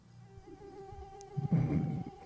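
A steady, thin whine of mosquitoes buzzing close by, holding an even pitch throughout, with a louder, rougher rustle joining in during the second half.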